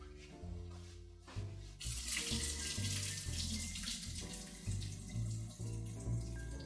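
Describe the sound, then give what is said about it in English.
Water pours and splashes steadily into a sink as potatoes are strained through a colander, starting after a brief pause and continuing as a loud rush over a low musical hum. “So let me go and strain my potatoes now in a colander, and then I'll be back, add them to the pot, and see where we are.”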